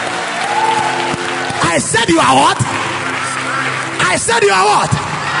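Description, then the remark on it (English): A crowd claps hands in sustained, dense applause to celebrate the Lord, while a loud voice shouts over it in bursts, with steady ambience throughout. “Celebrate the Lord with a hand clap.”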